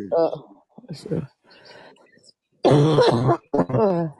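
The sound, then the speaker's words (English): A person coughs and clears their throat in a few rough, harsh bursts, with a quieter stretch in between and louder, raspy hacking toward the end. “that cough doesn't sound too good, man.”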